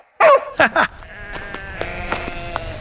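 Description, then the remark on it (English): Sheep bleat loudly, three quick wavering cries in a row, followed by a fainter, steady chorus of bleating from the flock in the background. “How are we supposed to find Dad's knife under all these sheep?”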